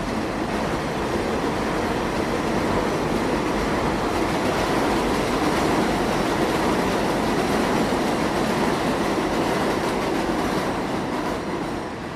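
A train rolls past, a loud, steady rumble and rattle of wheels on track that fills the whole stretch without easing, with no voices heard.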